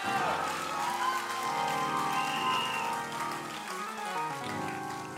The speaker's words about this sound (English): Come on, somebody. Come on. Come on. If you didn't clap, that means you are jealous.